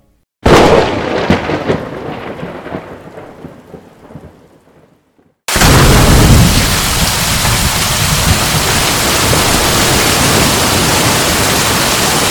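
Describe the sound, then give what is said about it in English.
A loud crack of thunder rumbles and fades over several seconds, then after a brief silence heavy rain pours down in a steady, dense roar. No voices. “The storms had picked up significantly, making visibility limited.”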